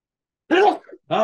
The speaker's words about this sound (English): I have to sneeze so bad.